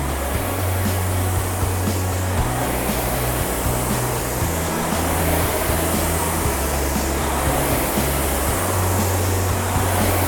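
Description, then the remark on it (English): A RowErg rowing machine's flywheel whooshes steadily during strokes, a continuous airy rush with gentle surges, while a low bass line from background music runs underneath. No one speaks. “Workout 34 - RowErg - Counter Clockwise”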